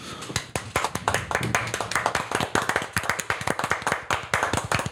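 Hands clap repeatedly for about five seconds, sharp crisp smacks in a quick, slightly uneven rhythm that never pauses, with no voices.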